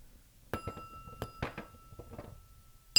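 A small bell, taken home from a bar, is rung several times in an uneven rhythm, each strike a bright metallic clink followed by thin, lingering high-pitched ringing tones. No one speaks.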